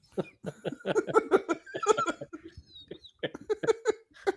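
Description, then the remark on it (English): A person coughs in a string of short, raspy bursts, pausing briefly partway through before another run of coughs. “I feel bad for the YouTube viewers, the few that we have that have just watched me cough.”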